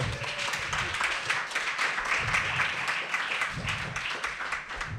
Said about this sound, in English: I did not expect to be applauded. Thank you very much.